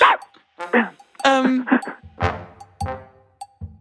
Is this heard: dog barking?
yes